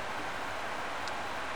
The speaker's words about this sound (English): I'm on the plane. So we're going about 570 miles an hour right now. We're at 39,000 feet, and I thought it would be cool to show you guys show you what it looks like here on the plane while I'm on the plane.